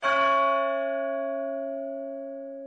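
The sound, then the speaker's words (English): A single deep clock-tower bell toll strikes once, then rings on with a rich, humming resonance that fades slowly, with no other sounds. “The clock tolled again.”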